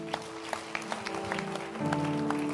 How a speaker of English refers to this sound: Keep clapping for them and clap for yourselves as well. Are you happy? Clap.